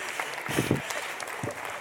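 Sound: applause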